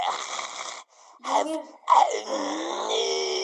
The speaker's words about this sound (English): That's me. Are you okay? That's me breathing.